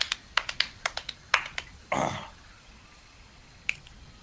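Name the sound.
hand clapping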